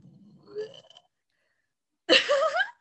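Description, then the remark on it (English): A long, low, rumbling burp from a person bringing up breakfast, rising in pitch as it drags on, then after a short silence a louder, rougher throaty burst. “That was me burping up the breakfast.”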